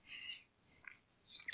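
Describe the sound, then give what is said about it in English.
Owls calling at night, about 150 yards to the northwest: three high-pitched, raspy calls in a row, each under half a second, followed by a couple of sharp clicks. No voices. “And you can hear these owls as we moved up, probably another 80, 90 yards, these owls would go off over in 150 yards over toward our northwest.”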